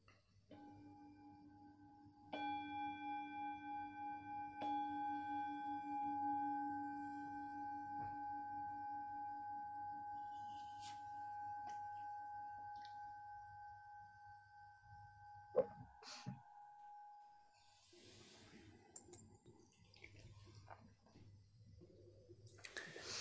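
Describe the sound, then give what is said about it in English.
A meditation bell is struck once to begin a period of meditation practice, its steady metallic tone with several clear overtones ringing out and slowly fading over more than ten seconds, followed by soft rustling and no speech. “We can begin this period of practice by hearing the sound of the bell.”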